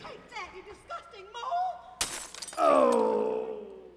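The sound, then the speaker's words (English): A large ceramic vase is smashed over a man's head in a single sharp, loud crash midway through, followed by a drawn-out ringing, wavering tone. Animated voices chatter before the impact. “But eventually, realizing that in his case it is in a very vulnerable spot, one of them takes a giant vase and...”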